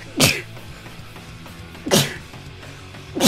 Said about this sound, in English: I am incapable of sneezing less than three times. I don't know what it is, man.